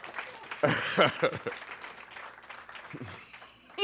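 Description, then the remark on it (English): A crowd applauds in a steady, dense wash of clapping, giving a hand clap of praise to the Lord, with scattered voices shouting and cheering over it, fairly loud throughout. “Get the Lord a hand clap of praise in Jesus' name.”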